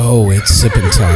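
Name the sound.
horse neighing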